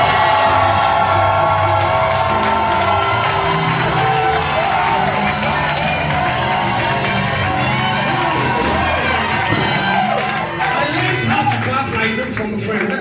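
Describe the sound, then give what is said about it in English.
A large church audience at a temple of the International Central Gospel Church in Kineshi, a suburb of Accra, shouts and cheers loudly and continuously when the featured singer asks them to, voices blending into a dense roar with scattered whoops rising above it, sustained for the whole stretch. “when the featured singer asked people to shout and then clap, they did.”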